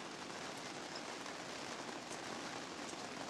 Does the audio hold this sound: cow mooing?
no